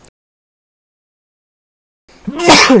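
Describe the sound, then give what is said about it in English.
After about two seconds of near silence, a single loud sneeze bursts out with a breathy, voiced explosion at the very end. “Bless you.”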